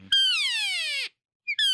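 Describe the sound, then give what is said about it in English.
A cow call blown on a Wayne Carlton game call, a somewhat louder call: one long, loud, reedy mew that slides steadily down in pitch, followed by a short pause and the start of a second call. “And then here's a different call here. It's a Wayne Carlton. So it's a little bit louder.”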